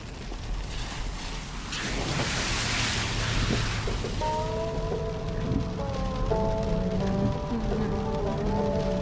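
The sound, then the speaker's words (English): Heavy rain and strong wind, heard while driving on the road, roar as a steady, dense hiss that swells briefly near the start. Partway through, a sustained stepping tonal sound rises over the downpour and continues to the end. “We can hardly see anything through all this rain, and the wind is blowing so hard we're barely staying in our lane.”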